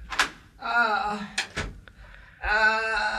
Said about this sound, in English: I believe I hear a rap-a-tap-tap. Shall I answer the door? Certainly, please open it.